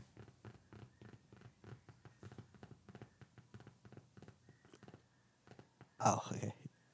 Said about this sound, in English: What was that? Sure what that noise was. Oh, he tapping.